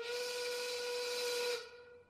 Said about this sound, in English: That factory whistle means it's noon, lunch hour.